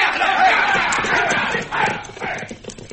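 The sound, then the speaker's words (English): A group of men mount their horses and ride off, hooves clattering amid a noisy commotion with shouting voices, the rumble thinning out as the riders move away. “All right, boys, get up on your horse.”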